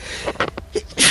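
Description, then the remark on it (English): A few short, breathy catches lead into a single sharp sneeze that bursts out at the end, fairly loud, with no talking. “Bless you.”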